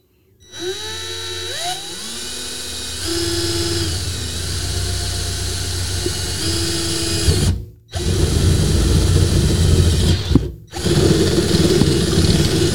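A power drill whines up to speed and bores steadily into material, drilling a hole at a mark made at 1.5 inches, its pitch shifting under load, with two brief stops before drilling resumes. No one speaks.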